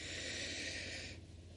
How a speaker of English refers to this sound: So let's take a cleansing breath in and exhale. Breathing in, I feel happy. Inhale.